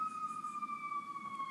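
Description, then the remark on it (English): An emergency vehicle siren sounds outside, a steady high wail that slowly drops in pitch as it passes. It stays moderately faint, with no talking over it. “Okay, all right, now we have to pause for a siren.”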